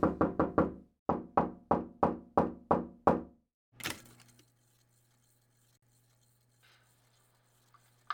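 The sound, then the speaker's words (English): Firm knocking on a door, a quick burst of four raps followed by six more steady, forceful knocks, then a single heavier thud and near silence with a faint low hum. “You open this door right now, Missy.”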